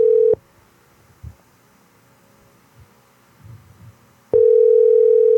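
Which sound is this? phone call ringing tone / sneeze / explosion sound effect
phone call ringing tone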